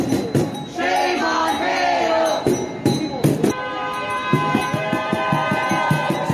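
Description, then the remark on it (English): A crowd of a couple hundred marchers walks down the street, many voices shouting and chanting together loudly and continuously, with a few horn-like tones sounding through the din. “And they've got a nice little crowd of a couple hundred people who are walking down the street.”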